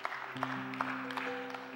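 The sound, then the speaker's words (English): A church audience claps together as praise to God near the dismissal, with sharp accents landing about every beat, set against a sustained chord of held musical tones; no one speaks. “Well, come on, let's give God a hand clap of praise for all being well in the house.”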